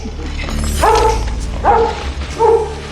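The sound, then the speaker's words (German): A chained guard dog barks three times in a steady rhythm, each bark loud, with a low mechanical rumble running underneath. “Ein Wachhund war hinter Tim her.”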